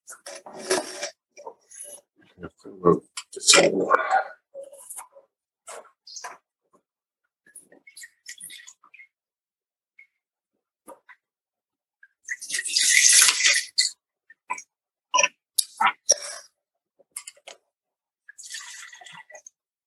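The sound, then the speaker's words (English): Wine is poured into glasses in two or three gurgling splashes, separated by pauses filled with faint clinks and small handling noises. No one speaks. “One second while we pour.”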